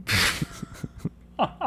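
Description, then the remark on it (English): A person imitates forceful yogic breath-of-fire breathing (pranayama): a long hissing exhale, then a quick, evenly spaced run of sharp nasal puffs, ending with two short voiced grunts. “Is this breath of fire? It looks like breath of fire.”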